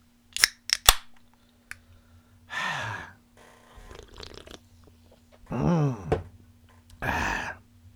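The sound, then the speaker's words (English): A few sharp metallic clicks and a pop as a drink can is cracked open, followed by several breathy exhales and sighs over a low steady hum. “Hold on, gotta pop a top.”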